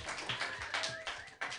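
A group of people clap their hands, a steady patter of overlapping claps with a few sharper, louder bursts, and no talking over it.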